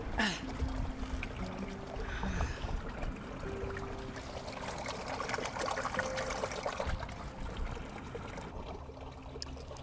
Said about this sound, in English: Sitting at the brook still, and the scripture verse came across my screen.